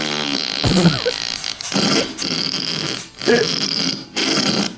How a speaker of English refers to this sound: It's a fart pedal.